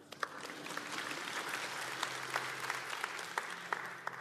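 A room full of people claps steadily, a dense wash of overlapping hand claps with a few sharper individual claps standing out, sustained at an even level throughout.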